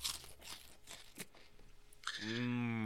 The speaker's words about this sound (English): Feel free to crunch.